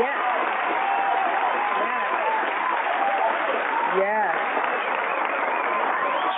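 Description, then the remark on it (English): A steady wash of applause fills the whole stretch, dense and continuous at an even loudness, with crowd voices and cheers blended into the clapping. “So what I'm going to do is give all those supporter people that y'all name an applause that they will keep on supporting you and all your new future music to come.”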